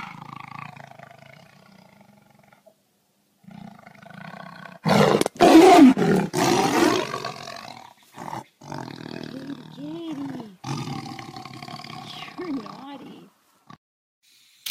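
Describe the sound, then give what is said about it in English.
A tiger lets out a loud roar that swells and fades over a couple of seconds, framed by lower rumbling growls and breathy vocal sounds before and after. “I've got your tiger here, sir.”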